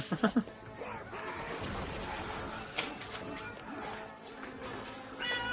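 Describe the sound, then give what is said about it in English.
A domestic cat gives a few short, quick meows right at the start, then a steady muffled rumble of room noise and movement continues, with faint voice-like sounds in the background. “This should be all my thing, guys, by the way, this cat, if you can leave me alone.”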